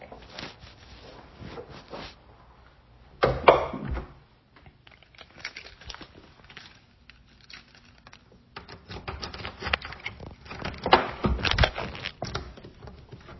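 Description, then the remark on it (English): A door is pushed shut with a solid thud, followed by a stretch of rattling, clicking and fumbling as the lock is worked, with no one speaking. “Sorry. Gotta lock the door.”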